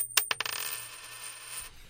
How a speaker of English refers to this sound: And to start it off, as usual, we have the traditional Sound Opinions coin toss. Heads or tails?